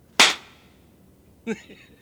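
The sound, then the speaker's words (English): Two sharp, smacking slaps to the face of a blindfolded Jesus of Nazareth, dealt by a crowd in a dramatized scene, landing about a second apart, the first loud and crisp with a short ringing tail, the second softer and duller. “An amazing and dramatic scene as the crowd begins to slap and spit on the suspect.”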